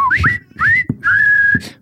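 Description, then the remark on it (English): A march tune whistled in three short phrases, with quick rising slides and a long held note near the end, clear over faint background noise. “Now, all together, let's whistle the song that is...”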